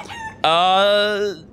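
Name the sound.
rooster crowing imitation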